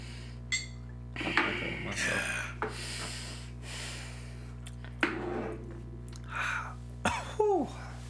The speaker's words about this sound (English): That's all you need is that little cough.